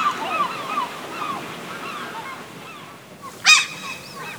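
Seabirds squawk and honk in a noisy, overlapping chorus, with one loud, harsh call standing out near the end over a soft background hiss; a bird called Larry is up in a ship's ropes, ripping the sails.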